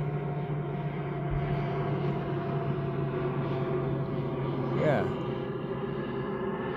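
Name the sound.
airplane flying overhead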